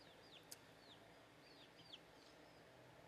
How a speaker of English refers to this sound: Just gave my chicken some water. Hercules, son of Zeus. It's one of my house chickens.